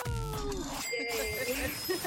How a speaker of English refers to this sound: If you just tell me officially right now, how many Christmas bells did you hear today? We heard 12 bells.